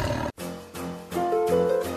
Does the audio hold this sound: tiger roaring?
yes